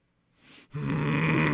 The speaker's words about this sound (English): You okay? Do you have some breathing problems? Because it sounds like I feel guttural breathing from down here.